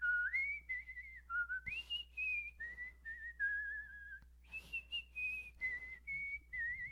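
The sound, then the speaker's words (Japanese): Someone whistles Happy Birthday, used as a hand-washing song: a series of clear sustained notes stepping up and down in pitch with brief breaths between phrases, a low steady hum running underneath. “You do that 口笛でやるのね。”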